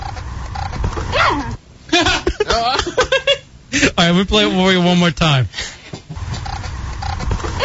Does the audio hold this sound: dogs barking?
yes